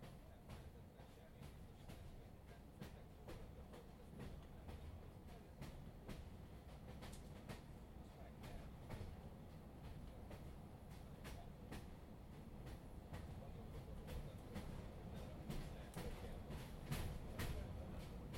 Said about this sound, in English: I took a train across the broad chest of India. The journey started in Mumbai Central Station